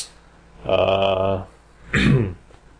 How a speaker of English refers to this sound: No, just clear my throat. All right. I'm good.